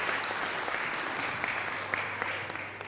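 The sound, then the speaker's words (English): Steady applause from a sizeable crowd at a worship gathering, welcoming a speaker, dense overlapping claps filling the whole stretch at a fairly even level. “So let's just give him a huge round of applause.”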